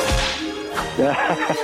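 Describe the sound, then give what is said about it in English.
A whip cracks sharply, a couple of loud, abrupt snaps spaced apart, with brief ringing tones trailing after the strikes. “So how proficient are you with the whip?”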